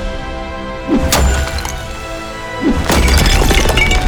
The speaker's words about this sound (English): Sir Cyborg raised his warhammer, and with a mighty swing, it smashed hard into the tribal insignias upon the treaty wall